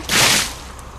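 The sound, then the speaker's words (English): A loud, hissing rush of water as a truck drives through a puddle, splashing dirty water onto a man, then fades within half a second into a quiet, low rumble. “Just then, a truck drove through a puddle, splashing him with dirty water.”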